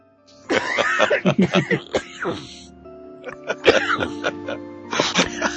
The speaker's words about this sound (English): Excuse me, I'm gonna have a coughing fit now because of this stupid voice.